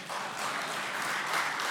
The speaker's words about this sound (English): Again, it's not clapping at what I just said.